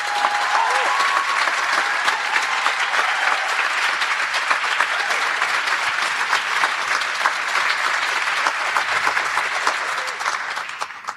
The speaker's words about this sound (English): Please give yourselves and this crew a big round of applause to kick us off.